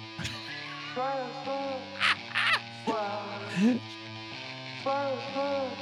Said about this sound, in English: Oh, you gotta get that chirp in the fucking beginning.